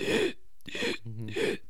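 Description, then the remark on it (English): A voice imitates gasping for air, as when running out of air in a mask in a hot room: three loud, harsh, breathy rasps in quick succession, with a brief low voiced groan between the second and third. “Because you're in that hot room, you start gasping like.”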